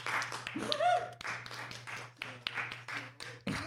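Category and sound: crowd, round of applause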